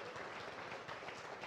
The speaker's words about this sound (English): Yeah, that's a clap moment.